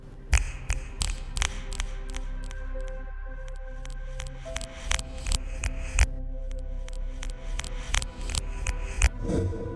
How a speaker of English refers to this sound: I sit for a moment, confused, and then something else sounds. I listen for several seconds as it repeats the same clicking sound.